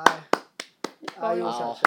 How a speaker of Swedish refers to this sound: En liten applåd.